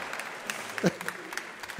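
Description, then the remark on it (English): Audience applause after the announcement that the last Elephant and Piggy book is coming out in May, a steady patter of many hands clapping at moderate volume, with a brief voice cutting through partway. “The final, thank you for the applause.”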